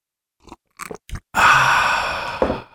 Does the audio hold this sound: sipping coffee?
yes